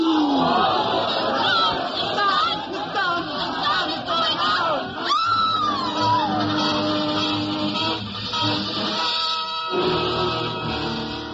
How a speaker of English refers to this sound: The crowd went mad with fear.